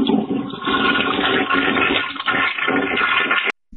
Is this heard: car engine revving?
no